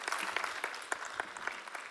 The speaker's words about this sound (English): The first song in that worship set was written by the worship team as they've begun to develop their songwriting skills, so I think we should give them an extra round of applause for that, don't you? Good job, guys. Tremendous.